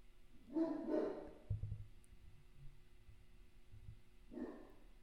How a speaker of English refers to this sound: can you please wrap up the barking?